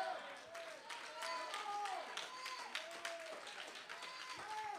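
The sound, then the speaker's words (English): A light, scattered round of polite clapping from a small audience during a church sermon, soft and unhurried, with murmuring voices running underneath the claps throughout. “Thank you for the 15-foot putt clap.”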